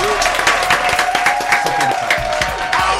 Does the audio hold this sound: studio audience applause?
yes